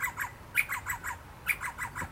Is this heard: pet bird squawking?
yes